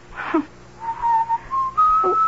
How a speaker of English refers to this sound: Why do you keep whistling that song? Because I like it. What's the name of it? Love's Old Sweet Song.